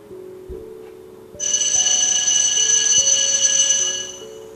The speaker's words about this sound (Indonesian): Bel masuk sekolah telah berbunyi, tepat pada pukul 7.15 pagi. Tanda kelas pagi akan segera dimulai.